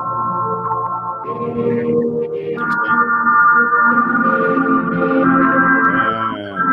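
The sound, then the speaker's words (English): Sustained, layered tones drenched in reverb, blurring into a continuous shimmering wash with long smeared tails and no gaps, holding steady at a fairly loud level throughout. “Man, that reverb sounds so good.”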